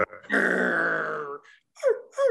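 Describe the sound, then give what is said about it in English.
A person imitates a dog, first with a long, rough growl and then two short, sharp barks, fairly loud with no other sounds around. “like, I mean, bark, bark.”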